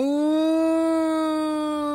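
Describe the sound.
A single sustained howl-like tone, loud, held steadily for about two seconds with a slight rise and fall in pitch: a person imitating a dog's howl.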